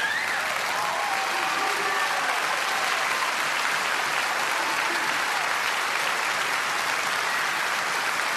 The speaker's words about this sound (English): He's holy, holy, holy, the Lord of all. He demands and deserves our greatest applause. God does.